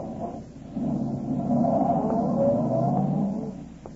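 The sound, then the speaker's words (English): A car engine is started with the starter, turns over and catches, then revs up with a steady rising drone as the car pulls away down a street, moderately loud, fading slightly at the end. “Cooper walked to his car, got in, stepped on the starter, and drove off.”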